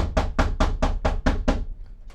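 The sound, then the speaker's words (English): Seven quick, evenly spaced, firm knocks on a door, followed by a brief quiet stretch with no voices. “Is there someone at the door?”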